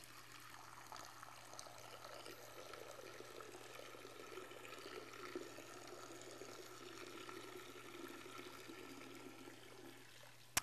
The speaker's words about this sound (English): And then on the seventh day, seven times, the priests walk around the altar as the presiding priest takes water from the pool of Shiloh and he pours it out.